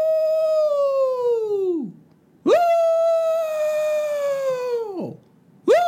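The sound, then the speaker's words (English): A pack of coyotes lying down next to graves howls: two long, loud howls, each holding a steady pitch before sliding down at the end, with a brief pause between and a third just beginning. “I turn to my left and I see a pack of coyotes lying down next to a bunch of graves as if like they know someone there.”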